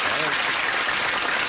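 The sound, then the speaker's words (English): A crowd applauds in a dense, steady wash of clapping that holds at an even level throughout, with a faint voice briefly showing beneath it at the start. “Crowd loves it.”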